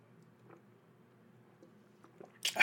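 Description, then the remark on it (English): A quiet sip of water: faint clicks and small mouth noises over a low background hum, ending in a short, louder slurping gulp. No one speaks. “I'm going to take a deep breath here, take a sip of my water.”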